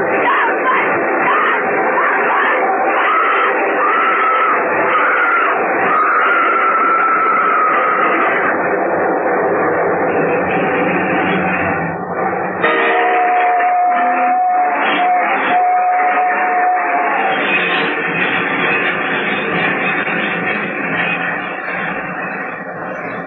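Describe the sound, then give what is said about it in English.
A train roars past for a long stretch, a loud, dense rattle and rumble that never lets up, with a thin, steady whistling tone rising out of it midway. No voices. “Nobody's going to hear anything except this train.”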